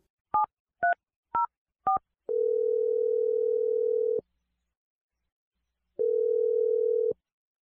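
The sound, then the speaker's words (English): Four short dual-pitch keypad beeps of a phone being dialed, then two long steady ringback tones separated by a pause, all clear and fairly loud with no talking. “I'm going to dial her dad's phone number and let you make your Awkward Tuesday phone call.”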